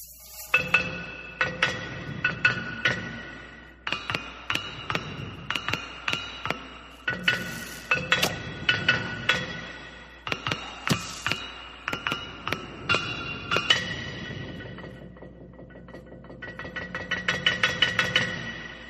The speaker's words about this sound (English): Without further ado, let's take a listen to these ancient gongs from the very foundation of creation itself. Enjoy.